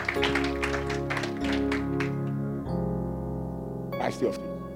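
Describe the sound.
An audience claps for the Lord Jesus in a quick, uneven burst over sustained organ-like chords; the clapping fades after a couple of seconds while the music continues, with a brief voice near the end.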